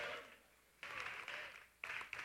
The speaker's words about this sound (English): That's right. You can clap for that.